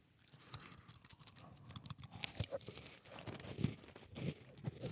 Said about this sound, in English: Yeah, that's a crunch. Mm-hmm. That's a crispy delight.